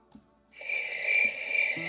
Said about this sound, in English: Well, with fun comes responsibility, and we have two buttons, and during a commercial, I tried to make the cricket sound.